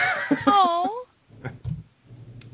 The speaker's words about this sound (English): apparently my cat wants to say hi.